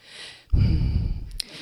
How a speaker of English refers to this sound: So you can all look forward to heavy breathing down the microphone because that's how I ended that, so good.